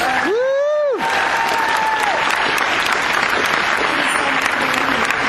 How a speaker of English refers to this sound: So thank you, and a round of applause for all of you.